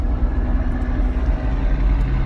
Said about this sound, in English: I'm sure you guys can hear the big rig blaring as we're bumper to bumper traffic. Sorry about that.